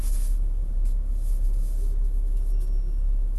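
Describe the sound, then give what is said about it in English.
A car idles in a traffic backup, waiting at a red light, with a steady, low engine rumble and faint road hiss, loud throughout, with no one speaking. “I can't do anything about a red light. It's just I gotta wait and let the traffic come.”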